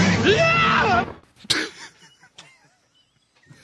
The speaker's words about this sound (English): You want to hear the Billy Dee scream again here?